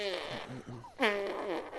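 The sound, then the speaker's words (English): A voice imitates a wet, sputtering fart in two stretches: a wobbly, buzzing run of sound, then a louder, juicier burst that trails off. Fairly loud. “Just some fucking juror just lets one out. It's a wet one. So, like, he takes a fart, you're just like...”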